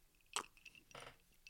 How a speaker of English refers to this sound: I'm going to take a sip of this Basil Hayden real quick. That's a bourbon for those of you guys who don't know.